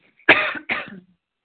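Two harsh coughs in quick succession, the first slightly longer, fairly loud with no talking around them, from a person who has been sick for a couple of days.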